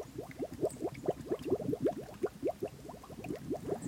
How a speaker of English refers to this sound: I hope you can hear the sound bubbling up from the mud.